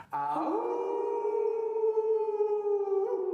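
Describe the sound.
A person imitates a wolf howl for the first time, a single sustained wavering tone that starts with a quick rise and holds steady for about three seconds, loud.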